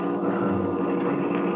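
A vehicle engine drones steadily as it comes up the road toward the listeners, a low, layered mechanical hum that holds at an even loudness for the whole moment, with no voices.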